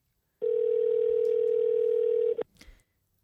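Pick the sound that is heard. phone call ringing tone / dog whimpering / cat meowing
phone call ringing tone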